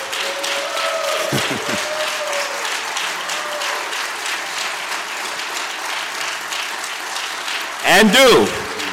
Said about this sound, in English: You can clap for that.